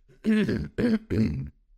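human body sound, throat clearing and coughing

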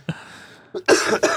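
human body sound, person coughing

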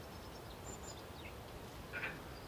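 bird, birds singing at dawn

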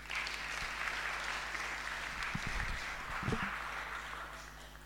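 crowd, brief round of applause

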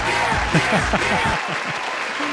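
sound effect, crowd applause

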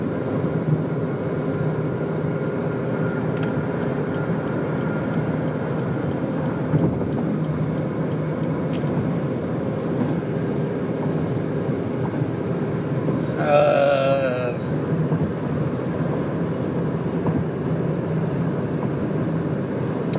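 vehicle, car driving on highway

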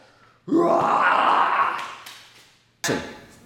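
human body sound, growling

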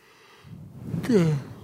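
human body sound, a person yawning

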